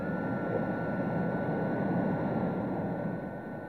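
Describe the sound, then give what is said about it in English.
Ken Warby's record-breaking jet boat races across the water of Blowering Dam in 1978, during the world water speed record run, with a continuous, heavy roar of its jet engine, a dense rumbling wash with a thin whine above it, holding steady before easing slightly at the end. “This is what it sounded like in 1978.”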